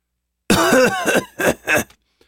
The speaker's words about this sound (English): In between coughs, he managed to communicate that he was fine, but very weak.